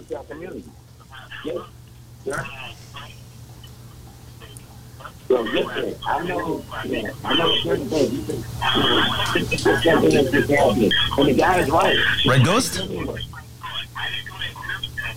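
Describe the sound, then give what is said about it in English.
Thin, telephone-filtered voices on a phone call talk over each other with a doubled, echoing quality, as the caller's radio volume feeds back into the line, above a steady low electrical hum. “I think your speaker is on, or maybe you can turn down a little bit the volume of your radio, because we have like an echo.”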